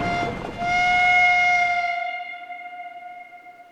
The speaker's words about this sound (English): It was then 11:22 that the fast, non-stopping goods train to Manchester and Liverpool came through, hitting them both where they stood.